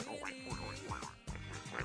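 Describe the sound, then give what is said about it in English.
A nasal, duck-like quacking noise repeats in short wobbling bursts with bending pitch, fairly loud, set against a steady musical background with no one speaking. “it's like a duck.”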